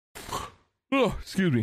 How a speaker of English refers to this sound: Did not mean to yawn like that.